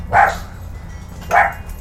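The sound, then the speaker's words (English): A person imitates a dog's bark with two short, sharp woofs about a second apart, fairly loud, over a low steady background rumble. “That was weak. I mean, it was better than what I could do.”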